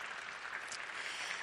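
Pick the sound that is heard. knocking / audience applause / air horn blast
audience applause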